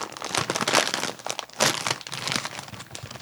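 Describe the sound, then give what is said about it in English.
A bag of Hare's Kettle Cooked Ranch Flavored Lattice Cut Chips, pulled out of a box, crinkles and rustles continuously, with brighter crackling bursts standing out now and then; no one speaks during the handling. “The first thing I'm pulling out are Hare's Kettle Cooked Ranch Flavored Lattice Cut Chips.”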